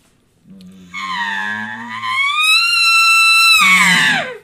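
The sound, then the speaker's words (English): An elk bugle blown on a game call, activating the vocal cords at the beginning and end: a low voiced growl climbs into a long, high, whistling squeal that holds steady, then drops back into a raspy grunt at the end. “like when you start to bugle, if you activate your vocal cords while you're breathing and stop, it'll give you that real sound in the beginning, and then at the end, activate your vocal cords again, like.”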